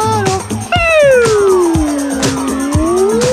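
A slide whistle glides down in pitch and slowly back up in one long sweeping note, with a brief higher warble before it, over steady thumping percussion in a loud music track.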